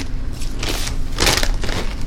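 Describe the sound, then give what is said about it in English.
A Dorito bag crinkles and crackles in several sharp, bristly bursts of plastic rustling, with a low steady hum underneath and no one talking. “Satan's trying to get into the Dorito bag.”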